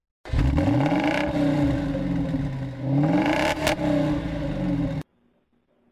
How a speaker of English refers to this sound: When I say next question, can you play the sound of a car revving its engine? Revving its engine. We're going to do this in honor of Dominic Toretto.